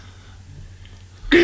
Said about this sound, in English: Oh, don't clear your throat like that.